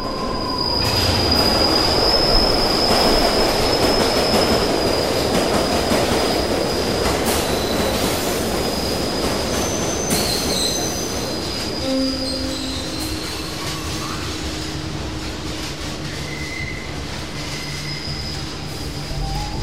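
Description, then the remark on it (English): A train bursts out of a tunnel and roars past, its wheels squealing in long, high metallic tones over a dense rumble that gradually eases as it slows. No voices. “Just as the train is about to burst out of the tunnel, he steps up and pushes the other one right in front of the train.”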